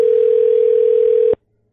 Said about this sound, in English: It's the impossibly loud phone. Every time I put the show together, I'm amazed at how loud this phone is.